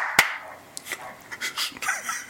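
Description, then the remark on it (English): A single loud, sharp hand clap rings out to sync audio for a remote recording, followed by a few softer, uneven claps and light rustling over the next couple of seconds. “We have a clap. We have two claps.”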